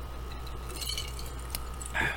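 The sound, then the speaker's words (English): A few light glass clinks, as drinking glasses tap together in a toast: a faint ringing touch near the middle and a brighter chime at the end, with no one talking. “But hey, you know, like, cheers. Here's to the next depression. Here's to the Great Reset.”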